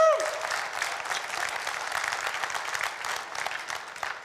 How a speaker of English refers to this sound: Every single Sunday since the beginning of this year, we have celebrated a baptism here at Trace. Yes, you can applaud for that.